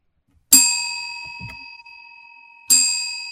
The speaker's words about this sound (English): Oh, two bells.